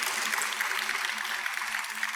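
An audience claps steadily for about two seconds, a dense, crackling patter of many hands at an even, fairly loud level, with no voices over it.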